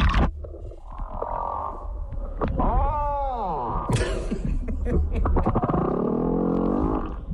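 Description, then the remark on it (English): A male humpback whale sings, with drawn-out moaning groans and rising, falling whoops flowing one into the next over a low underwater rumble, loud and continuous for the whole stretch. “It's a male humpback whale singing his heart out for a mate.”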